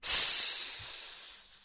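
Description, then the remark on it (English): A loud, sustained hiss that starts abruptly and fades gradually over about a second and a half, bright and airy like escaping steam or a snake, with no voices. “That line ends with, parentheses, loud hiss.”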